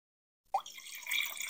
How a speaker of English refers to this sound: He pouring wine, y'all. Let me do it in the microphone. Give y'all a little ASMR. ASMR.